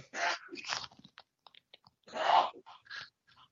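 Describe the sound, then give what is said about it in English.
A man sneezes several times in the background: abrupt, breathy sneezes one after another, two quick ones and a louder one after a pause, with small sniffly noises scattered between them and no talking. “Who is sneezing in the background?”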